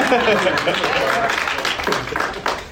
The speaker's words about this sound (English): You guys should clap louder than that. Those are hard names.